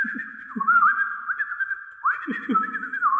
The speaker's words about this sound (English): You hear a lot of trilling, a lot of chittering, so to speak, echoing from inside the pipe. But this thing is like its legs are flailing, but it does not seem like it's able to get out.